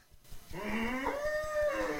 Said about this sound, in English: A cow?